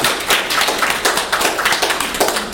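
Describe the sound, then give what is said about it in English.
An audience applauds a speaker's opening statement, many overlapping hand claps forming a dense, bright patter at an even, moderately loud level throughout, with no voices. “Everyone give Maren a round of applause for her opening statement.”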